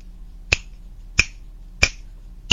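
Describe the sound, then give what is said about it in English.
Four crisp finger snaps at a steady, even pace, each a sharp bright click with nothing else but a faint low hum in between, played as the mystery sound in an Alexa sound quiz game. “Oh, I bet it's snap. Correct, the answer was snap.”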